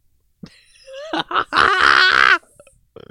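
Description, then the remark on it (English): A loud, drawn-out burp rumbles for over a second, rising into a strained, gurgling belch with harsh throaty texture, preceded by a few short vocal bursts and followed by a brief faint noise. “Throat farts. You got throated.”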